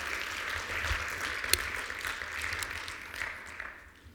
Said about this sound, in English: Come on, let's give him a great round of applause this morning because he's good.